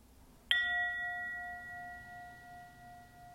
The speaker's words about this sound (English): And the third bell is for one another, the recognition that none of us does this task of waking up all by ourselves.